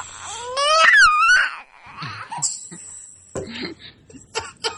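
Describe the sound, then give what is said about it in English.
A child wails loudly in a high, rising and falling cry for about a second and a half, then trails off into quieter broken sobs and choppy vocal sounds. “And then Skype notified me that the microphone is picking up speaker sound. It's a very loud child.”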